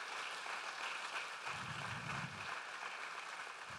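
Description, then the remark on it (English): Steady applause from a crowd giving a hand of thanks to the boys' mentors, a dense, even wash of many hands clapping throughout, with a brief low rumble in the middle; no one speaks. “They're clapping for each other.”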